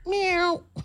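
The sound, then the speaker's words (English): A single drawn-out meow, loud, most likely a person's voice imitating a cat, followed by the brief start of another vocal sound. “Meow. Oh, little kitty litter.”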